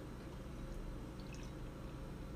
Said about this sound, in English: Let's pour this beer. Let's do it. All right, here we go. Favorite sound. There you go.